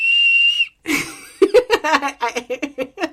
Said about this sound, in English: Did you just blow a whistle? What was that? Well, you know, lately I've been recording in my daughter's room, and so we have this, a little wind chime hanging, and then right next to it was a whistle, so I thought I could just do a little...